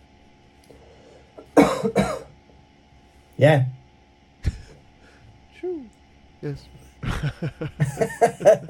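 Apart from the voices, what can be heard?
cough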